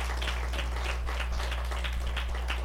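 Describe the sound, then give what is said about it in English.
An audience claps for their pastors in a steady, dense patter of many hands, fairly soft overall, with a low electrical hum running underneath and no voices. “Could you just give your pastors a good hand clap?”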